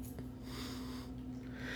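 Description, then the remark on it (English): A dog named Molly breathes heavily with a short snort as she walks toward the speaker, a steady rough airy sound over a constant low hum, with no one talking. “You guys hear her breathing.”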